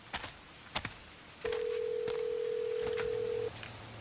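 A few sharp clicks like phone keys being pressed as someone dials a phone call, then a steady mid-pitched telephone tone holds for about two seconds, with more faint clicks over it. No one speaks.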